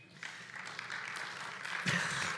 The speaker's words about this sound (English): Clap for that.